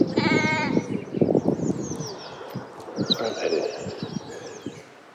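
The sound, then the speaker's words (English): A sheep lets out a loud, wavering bleat at the start, followed by scattered baa calls and shuffling from a flock, with birds chirping in the background outdoors. “Cute sheep.”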